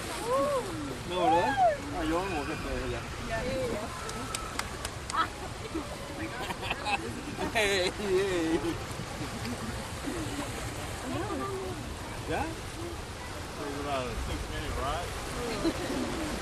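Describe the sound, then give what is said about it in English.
A raft on the Grizzly River theme park ride rushes through churning river rapids, with steady splashing and roaring water throughout, while several voices talk and call out over the noise. “I hope you enjoyed Grizzly River. There you go. Grizzly River ride.”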